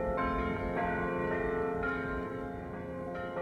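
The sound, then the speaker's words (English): Church bells of a Benedictine monastery in the middle of a city ring in a steady, overlapping peal, each new strike arriving every half second or so over the lingering hum of the previous ones. No one speaks. “You can hear these different bird calls, the robins and the mourning doves, and then you hear these bells.”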